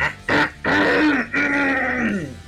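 Someone clears their throat loudly and close up, a few rough, gravelly bursts with a drawn-out growling rasp in the middle, with no talking.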